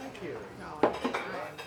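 Dishes and cutlery clink in the busy dining room of Derv Supper Club in Golden Hill, a sharp clatter standing out near the middle over a steady murmur of background chatter.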